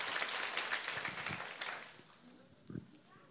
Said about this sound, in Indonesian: Tepuk tangan sekali lagi buat Tuhan.